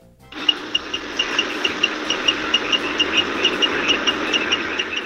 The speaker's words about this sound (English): I hear this noise even when I'm asleep. The noise of a bus idling with the indicator on.